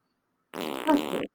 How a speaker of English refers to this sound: Ooh, he had the double fart. That one squeezed out.